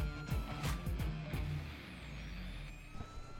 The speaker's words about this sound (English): An interesting location for the recording of this one as we sit on the bus on the way to George Mason.